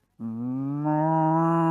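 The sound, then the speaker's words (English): A person imitates a cow with one long, loud, steady moo lasting about a second and a half, its pitch rising slightly near the end, with no other sounds around it. “You do the moo.”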